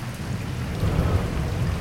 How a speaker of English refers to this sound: The morning of the school teacher's marriage to an island girl was misty, warm, and wet. By 8 a.m., it was raining hard, real hard.